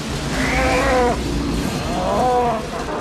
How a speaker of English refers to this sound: Cow. Another cow. Actually, I think that was the same one.